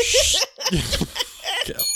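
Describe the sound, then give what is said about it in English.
A bright metallic desk bell rings at the start, its high tone sustaining briefly, with voices talking afterward and a faint ringing tone lingering near the end. “Yeah, the reconfiguration, my summer desk alignment is not conducive to immediate bell ringing.”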